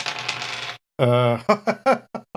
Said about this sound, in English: So I have 3 dice on that. And here's my roll. Oh, wow. Nice. Good job. That's pretty stellar right there. That is a really good roll.